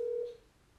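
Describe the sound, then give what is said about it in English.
A single steady electronic ringback tone from an outgoing phone call on speakerphone, a mid-pitched hum lasting about a third of a second before cutting off into quiet line hiss. “Dog, he ain't gonna answer, bro.”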